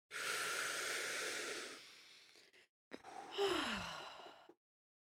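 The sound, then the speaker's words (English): A long, deep inhale close to the microphone, one of three deep breaths, a brief pause, then a breathy exhale with a slight voiced sigh, loud and airy with no talking. “Maybe we all need to take a deep breath. So we'll do three breaths.”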